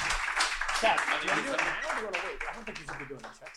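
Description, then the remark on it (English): A crowd claps steadily for a few seconds, a dense wash of applause with voices calling out and talking over it, fading slightly toward the end. “Round of applause”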